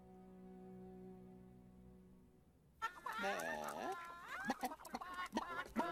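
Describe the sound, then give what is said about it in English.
A low steady hum gives way halfway through to a busy flock of chickens clucking and squawking, with quick overlapping calls and sharp bursts. “Do great things if I'm stuck here with these silly chickens.”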